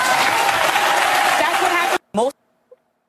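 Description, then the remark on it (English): A crowd applauds with dense, steady clapping for about two seconds, then it cuts off abruptly, followed by a brief burst of a voice and silence. “Why did they clap for that?”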